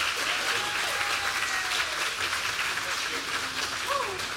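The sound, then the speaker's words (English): A large audience at an outdoor folk festival in Richmond, Virginia claps for a performer in a steady, dense burst of applause that holds at a constant level throughout, with faint cheers and voices mixed into the clapping. “Let's give him another big round of applause.”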